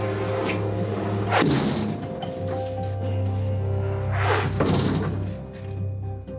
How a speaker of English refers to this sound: A 25-ton steel door swings shut.